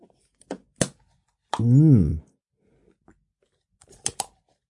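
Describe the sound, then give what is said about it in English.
Someone takes a sip of water: a few sharp glassy clicks, a brief wavering voiced sigh after swallowing, then a final cluster of light taps as the glass is set down. “I have a drink of water.”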